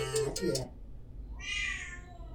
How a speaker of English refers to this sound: Man, I'm sorry about the cat.